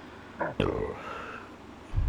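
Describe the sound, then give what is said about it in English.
A single loud, low burp into a microphone erupts abruptly and rumbles for about a second before trailing off, with a brief throaty sound just before it and no talking. “Probably not to burp into the mic, but I couldn't help it.”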